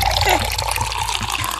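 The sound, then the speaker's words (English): Water pours steadily into a cup or glass for a second or two, a continuous splashing trickle with a rising fill tone, poured for someone to drink. “Wait, let me get you water.”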